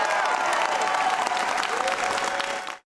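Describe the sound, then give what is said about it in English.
A crowd of legislators and state and national activists who lobbied for the bill applauds loudly and steadily as Reynolds speaks at the Iowa state capitol, dense clapping mixed with scattered cheers and whoops, sustained for a few seconds before cutting off abruptly. “A crowd of legislators, as well as state and national activists who've lobbied for the bill, cheered as Reynolds spoke at the state capitol.”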